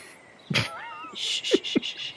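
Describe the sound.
A person loudly imitates a giant eagle's caw: a sharp burst, then a wavering high-pitched cry that turns into a harsh, raspy screech with a few throaty pulses.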